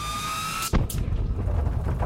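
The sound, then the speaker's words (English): A steady electronic hum is cut off by a sudden loud blast as an explosion tears through a freighter, followed by heavy, continuous low rumbling and crackling debris as the explosion rolls on. “As the explosion tears through the freighter, Stanek is flung forward out of the umbilicus and into the Ulaki hallway.”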